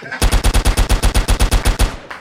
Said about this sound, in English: AK, one more time. AK, let that motherfucker ring.